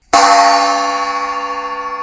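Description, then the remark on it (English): A gong is struck once to open a listener mailbag segment, ringing out loud with a shimmering, wavering metallic tone that sustains steadily without fading much. No voices. “So there, cue the gong.”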